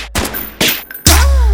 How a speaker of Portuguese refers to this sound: Sarra no pente de 30, passo pão na chota, pão na chota dela. É só tiro de AK, vai balar na sua xereca.